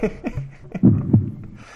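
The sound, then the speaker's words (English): Two deep, muffled thumps about a third of a second apart, made by a voice imitating a heartbeat, fairly loud after a few softer vocal sounds. “Corey starts to feel his own heartbeat and bum, fear bum, bum, and worry”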